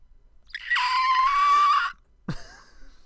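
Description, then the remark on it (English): A single loud, sustained high-pitched human screech lasting about a second, harsh and strained, followed after a short pause by a brief breathy vocal sound. “Just screech at you.”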